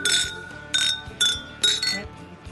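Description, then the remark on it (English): Beer glasses clink together in a toast, four bright ringing chinks in quick succession, each ringing briefly before the next, fairly loud. “Cheers. Cheers. Cheers. Cheers.”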